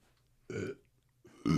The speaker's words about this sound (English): Excuse me. I like how you burped. Yeah, you did not do that off mic at all. And then in mic.